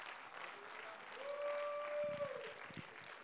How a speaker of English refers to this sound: And if you're thankful for that, you ought to clap your hands to the Lord right now.